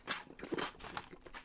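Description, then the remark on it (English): Loud, wet drinking slurps come in a quick cluster of noisy, hissing mouth sounds, starting with a sharp bright burst and trailing off into softer sucking noises, with no talking. “Why do you drink so loudly?”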